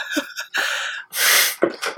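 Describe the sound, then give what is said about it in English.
A dog chewing on a bone: a few irregular, crunchy, gnawing bursts with wet, breathy textures and short pauses between them, fairly loud and with no talking. “You decided right as I hit the record button that bone was primed to be chewed on.”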